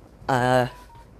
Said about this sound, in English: Got my phone beeping like mad.